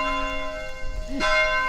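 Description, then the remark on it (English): Church bells at Conception Abbey in Conception, Missouri, rung by Benedictine monks pulling ropes before morning prayer, ring out with long, overlapping metallic tones that hum and sustain, and a fresh loud stroke lands near the end, with no voices present. “the bells ring prior to each time of prayer.”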